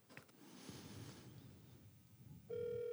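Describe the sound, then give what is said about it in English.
Soft rustling and handling noise, then near the end a loud, steady electronic ringback tone cuts in as a phone call to someone's mother rings while waiting for her to pick up. “Are you calling your mom?”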